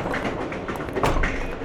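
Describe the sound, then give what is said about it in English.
A moving train rumbles steadily along the rails, a dense, continuous roar with faint rhythmic clatter and knocks, loud, with no voices. “Me and my pard here are robbing this train, not you.”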